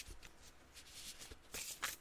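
Cards from a plastic tarot deck are shuffled in a quick riffle, a dense flurry of crisp slapping and flicking that swells near the end, fairly quiet with no talking.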